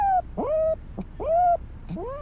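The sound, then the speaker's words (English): A little white female dog whimpers in a series of about four high, rising whines with short pauses between them, thin and plaintive, with no one talking. “And then there's the little white dog model.”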